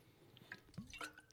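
A brief sip of water: a soft wet slurp and a gulp, followed by a quick, louder smack at the very end, with no one talking.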